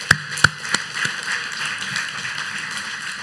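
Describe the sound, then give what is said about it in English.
Following a prayer, a few sharp, separate claps ring out, then many hands join into a steady, even wash of applause for a man that holds at a moderate level without any voices. “Let's give Jeff a round of applause.”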